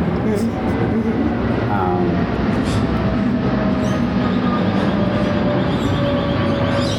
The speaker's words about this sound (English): And once this plane goes over,